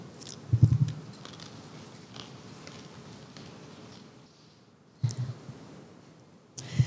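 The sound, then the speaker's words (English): Crunchy chewing of a cracker eaten as communion bread, in short bursts: a crisp bite and munching near the start, a quiet stretch, then two more brief crunching bouts. No one speaks. “As we eat this cracker, this bread, we receive your sacrifice for our sins. Let's eat.”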